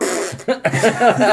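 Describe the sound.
A person imitates a fart with their mouth: a brief, loud run of buzzy, breathy bursts lasting about a second, with a slightly laughing quality.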